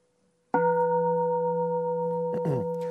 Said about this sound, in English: So I'll hit the bell to begin, and then we'll chant ho, and then after a bit, a minute or so, I'll hit the bell to end.